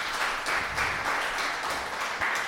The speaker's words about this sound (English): Thanks to everyone who's joined us today. Give yourself a little round of applause for being here.